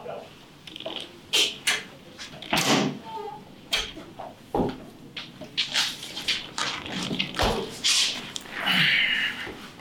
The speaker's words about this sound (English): I'm going to open this door so you can go through it.